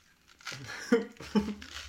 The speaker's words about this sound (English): You fart. No, I didn't. How dare you? Y'all heard that, right? On the pod? Nice and crisp. Yeah, there you go. Y'all heard what I heard, right? I know y'all heard it nice and crisp.